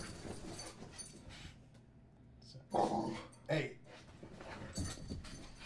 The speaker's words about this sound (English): The dogs are fighting. No. They're fighting. They're playing.